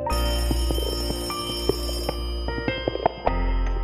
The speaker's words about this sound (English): The phone rang.